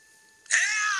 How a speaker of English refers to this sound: Hey, can we get your buzzing sound, please? Yep.